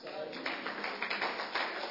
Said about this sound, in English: If you're clapping for Jesus, clap very well and praise God.